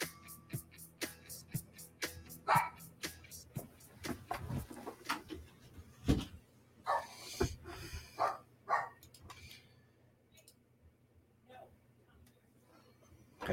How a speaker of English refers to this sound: Dogs here, all kinds of noise going on.